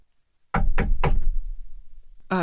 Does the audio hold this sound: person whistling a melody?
no